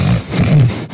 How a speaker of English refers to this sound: Do you think anybody tunes into a podcast where everybody just kind of clears their throat through the entire thing?